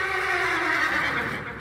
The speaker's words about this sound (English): All 3 horses outside, tied to a pair of shriveled saplings by the road, were now neighing and pawing frantically.